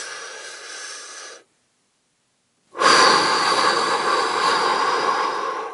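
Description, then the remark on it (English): Two long, loud, deliberate, exaggerated deep breaths, a steady inhale lasting over a second, a brief pause of silence, then a longer, forceful, airy exhale, with no talking. “And I was also taking really deep breaths and I would like go.”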